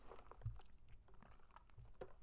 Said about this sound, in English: Sippity sip.